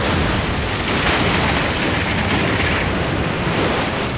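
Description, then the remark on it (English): A boat hull smashing apart as a Wani rams the boat: a loud, sustained roar of crashing and splintering that holds steady for several seconds, with no voices. “The Wani rammed the boat, shattering its hull.”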